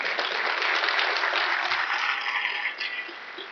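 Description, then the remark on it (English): A church audience claps in a steady round of applause for a serviceman who has stood up, a dense crackle of many hands that holds at an even level before easing slightly toward the end. No one speaks. “why don't you stand up so we can give you a round of applause there.”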